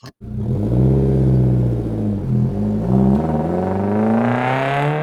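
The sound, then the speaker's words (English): A car engine starts up and the car takes off out of a house's driveway, its rumbling drone climbing steadily in pitch as the vehicle pulls off, with no voices. “So she goes and looks down the window, and she hears a car door slam, and the car takes off out the driveway.”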